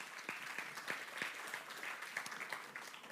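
A crowd claps steadily for about three seconds, a dense wash of many hands with sharper individual claps popping out, evenly loud throughout with no voices on top.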